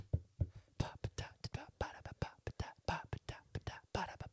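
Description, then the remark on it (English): A very quick theme song beat beatboxed with the mouth: a steady run of sharp, breathy percussive bursts and pops repeating at a brisk, even tempo for a few seconds, with no talking over it. “If you could give me a very quick theme song, please. Give me a beat.”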